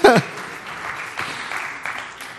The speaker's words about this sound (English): So anyone that needs to groan, just groan right now. Oh, claps. That's wonderful.